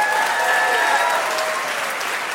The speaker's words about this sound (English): Big round of applause for them, please.